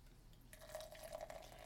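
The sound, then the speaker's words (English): Beer, a Belgian-style golden ale of 7.75% alcohol by volume, pours steadily into a glass, starting with a splash and continuing as a gurgling stream with a faint rising tone as the glass fills. No one speaks. “And the pour?”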